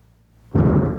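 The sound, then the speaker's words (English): A sudden, loud boom of thunder breaks in after a quiet moment, then rolls on as a heavy, sustained low rumble with no voices over it. “I like everything I'm saying is being punctuated by thunder.”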